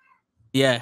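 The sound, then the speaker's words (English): A single loud meow from the speaker's cat, brief, cutting in sharply after a moment of near silence with a few faint soft noises. “My cat, bro.”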